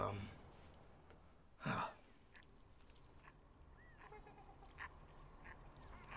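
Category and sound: bird, ducks quacking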